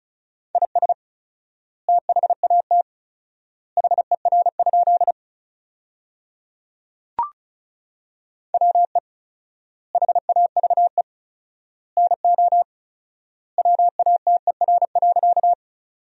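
Rapid Morse code at 35 words per minute with 4x word spacing, sending sentences built from the top 100 words: a steady mid-pitched tone keyed in quick dots and dashes, sent in short clusters separated by long silent gaps, with one sharp click partway through.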